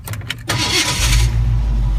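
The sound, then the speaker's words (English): The 351 engine of a 1967 Ford F100 pickup truck cranks with a few quick starter whirs, then catches and settles into a loud, steady low rumble at idle. “Just wanted to run it so you see how easily it starts.”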